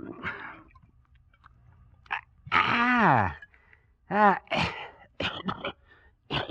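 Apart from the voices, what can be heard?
sputtering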